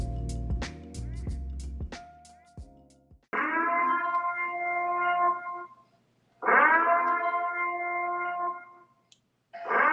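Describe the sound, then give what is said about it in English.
The siren from The Purge series of movies and television shows: after a few sharp opening hits, long, loud, droning wails sound in repeated blasts of about three seconds each, separated by brief silences, with a third blast beginning at the end. “So y'all know that siren. That is the Purge siren.”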